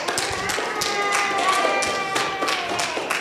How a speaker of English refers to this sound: Quick round by show of applause.